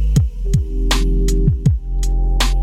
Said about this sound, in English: Excuse the interference.